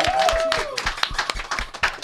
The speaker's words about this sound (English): Now, give a round of applause to all the spankers. Let's give a round of applause to all the spankers.